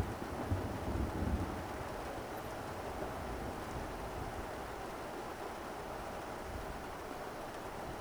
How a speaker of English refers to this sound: And then lashes of cold, heavy raindrops plummet from the sky.